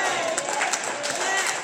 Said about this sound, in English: Hold on. Y'all clapping. Now let me get back in your kitchen. Oh, yeah, y'all love all this clapping.